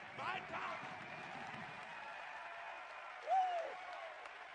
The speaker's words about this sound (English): You know what we need in our churches? It's not less shouting. It's more shouting. It's not less hand clapping. It's more hand clapping.